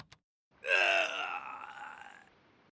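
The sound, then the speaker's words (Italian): A sound effect of a man's drawn-out dying groan, loud at first with a strained, wavering pitch, then fading into a long, weakening moan over about two seconds, with no other talk. “Un uomo che muore. Ogni podcast di True Crime che si rispetti deve far sentire un uomo che muore.”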